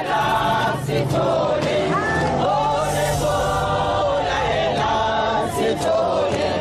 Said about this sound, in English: Outside the courtroom, women banded together and voiced their anger in song. Here they are chanting, "Why are you killing us, Sithole? Why are you killing us?"